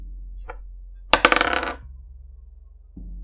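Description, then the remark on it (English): Dice rolled for an arcana check clatter onto a hard surface with a sharp burst of rapid clicks, then settle into a softer, rolling rattle that fades out over about a second and a half, landing on a seven. No one speaks. “Roll me an arcana check.”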